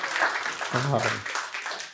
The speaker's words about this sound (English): And so y'all give God a hand clap of praise for that. Amen.